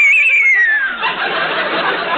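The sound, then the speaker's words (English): A voice imitates the frightened whinny of horses: a high, quavering cry that slides downward, then breaks into a breathy, rasping snort. One loud call, with no talking. “The frightened whinny of our horses.”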